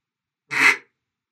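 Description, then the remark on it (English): A single basic quack blown on a duck call: one short, raspy, nasal burst lasting about a third of a second, moderately loud and alone with no talking. “So that's your basic quack.”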